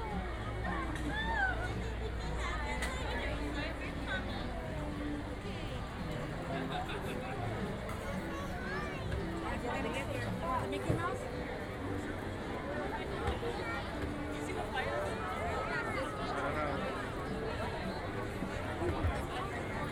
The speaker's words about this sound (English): I would assume that this large crowd of people that have gathered about have something to do with the fact that they're waiting for this to open.